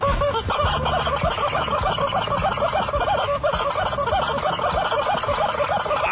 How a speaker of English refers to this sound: All right, fine, but was it better than a horse playing with a rubber chicken?